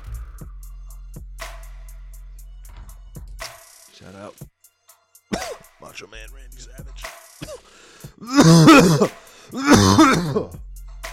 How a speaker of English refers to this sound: Enjoy those coughs, people. Enjoy those coming out of your car speakers and your headphones. Because I'm getting high.